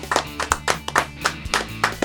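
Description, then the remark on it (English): People clap their hands in a quick, steady run of about eight sharp, bright claps over two seconds, moderately loud, with a low hum underneath and no talking. “We'll clap it out.”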